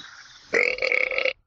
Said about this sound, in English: Whoa, hey, that was a good one. That was a solid 6 there. Thank you. Oh, that was a real burp. That was hell a burp. Yeah. Yeah. That was my burp. That was awesome. That was a good burp. That was a White Claw burp. I give that an 8 out of 10.